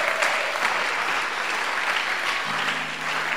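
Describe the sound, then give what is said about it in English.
An audience at a service claps for the singers, steadily throughout, a dense, even wash of many hands with no pauses, and a faint sustained tone appears beneath it near the end. “Clap your hands for the singers.”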